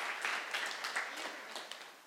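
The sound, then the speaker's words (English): A crowd applauds with dense, overlapping handclaps that keep up a steady, crackling patter for a couple of seconds, moderately loud and slowly tapering, with no clear talking over it, clapping for about 600 meals sent to local people. “Yeah, come on, we can clap about 600 meals.”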